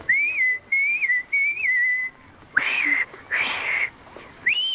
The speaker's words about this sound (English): And anytime you need me, you know, just whistle like this. Like this?